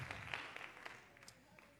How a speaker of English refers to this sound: Clap your hands as you're seated. Give God praise.